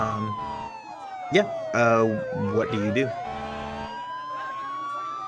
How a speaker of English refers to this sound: And you actually hear police sirens are coming from around the corner.